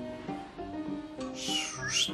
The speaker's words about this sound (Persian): مگه سوت میزنی؟